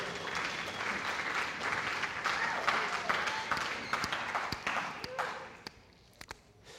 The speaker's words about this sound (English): Amen? Let's clap for that. That's a big deal.